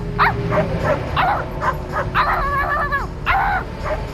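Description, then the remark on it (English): A dog lets out a quick run of yappy barks and yips, breaking into a couple of longer whining cries, over a steady low engine-like rumble. “Hold on, there's a dog in a pickup truck. Got to address this.”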